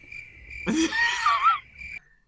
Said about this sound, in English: Oh, you want to play those crickets again?